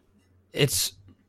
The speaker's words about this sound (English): If you are a fan of the other, excuse me, trying to clear my throat.